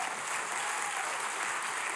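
An audience claps steadily for a couple of seconds, giving the Lord a clap, a dense, even wash of many hands applauding together at moderate volume, with no voices standing out.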